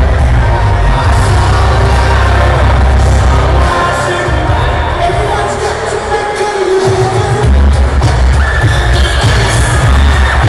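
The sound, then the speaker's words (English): A large arena crowd at a Taekwondo event roars and cheers as a Taekwondo master from Miami, Florida comes out in her belt and dobok and bows, in a steady, dense wash of noise, loud throughout with a heavy low rumble and scattered bangs, briefly dipping before swelling again. “You're going to hear the crowd.”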